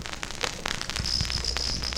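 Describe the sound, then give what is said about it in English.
A field recording made the previous year: crickets trill in a thin, high, continuous buzz that settles in after the first second, over an outdoor background with scattered clicks and soft low thumps. “Oh, crickets? It's crickets. Sorry, this was my recording from last year.”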